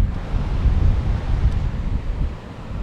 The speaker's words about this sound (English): Yeah, that is the sea.